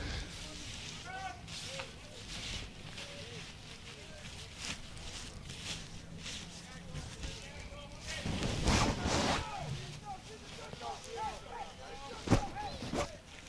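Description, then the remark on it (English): Crinkly plastic rustling and flapping in irregular bursts as a rain poncho is unfolded and pulled on during a live evening broadcast, swelling in the middle with a sharp crackle near the end, faint voices murmuring underneath. “You guys know what it's like to unfold and try to get into a rain poncho.”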